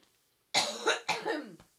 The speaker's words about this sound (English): hang on, I have to cough. Break for coughing.